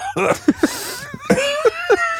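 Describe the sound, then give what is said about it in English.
Two quick clusters of hoarse coughs, about three short bursts each, separated by a brief pause, with a raspy, voiced edge and no talking. “Maybe I have dementia and a cough.”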